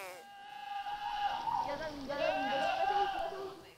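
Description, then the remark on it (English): A goat bleats in one long, quavering cry that wavers up and down in pitch, loud, lasting several seconds with no other sounds around it. “That is a goat, correct.”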